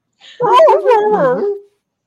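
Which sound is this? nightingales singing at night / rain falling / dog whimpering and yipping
dog whimpering and yipping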